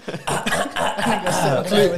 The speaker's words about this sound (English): clear my throat for yeah. the intro. Yeah, just right in the mic.